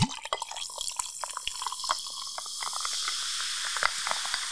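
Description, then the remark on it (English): Tonic water pours steadily into glasses to fill them up, a continuous bright fizzing hiss with scattered splashy drips and bubbly pops over about four seconds, no voices. “We're going in for the tonic water now.”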